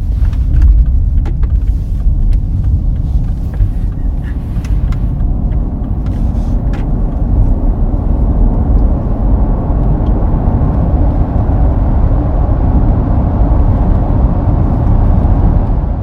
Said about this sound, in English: We allow some intrusion from the engine into the cabin so that if you're demanding performance from the engine, you hear that sound, and it correlates the sensations your body feels.